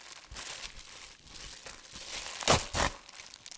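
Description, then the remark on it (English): Crinkling wrapping as a funnel-shaped package is unwrapped: a steady, dense rustle of crackling paper or plastic, with two louder crunching bursts near the end and no speech. “He reaches his hand in, he pulls it out, and it's...”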